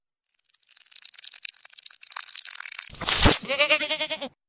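A single loud, wavering goat bleat rings out, following a few seconds of crunchy rustling and a brief harsh burst.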